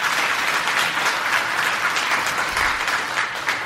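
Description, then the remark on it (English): An audience of about 150 to 200 people applauds to show concern that the U.S. will be drawn into a military conflict in the Middle East: many hands clapping together in a dense, continuous patter, fairly loud and even for several seconds, with no voices. “Clap if you are concerned.”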